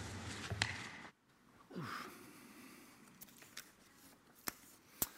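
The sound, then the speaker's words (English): Church keys jingle and clink in short, scattered bursts, with a few sharp metallic taps spread across a quiet background. The sounds are fairly soft, and no one speaks. “So what was that, Nathan? What was it? Keys, keys, brilliant.”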